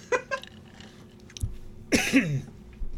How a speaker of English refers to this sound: Excuse me one second. Yeah, go ahead and cough.